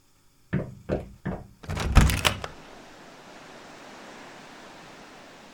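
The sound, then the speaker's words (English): A door is opened and closed as a person checks outside it: three quick wooden clunks, then a louder rattling thud of the door swinging and latching, followed by a quiet steady room hiss. No one speaks. “So was she just eavesdropping outside my door, or... You know what? Let me just check.”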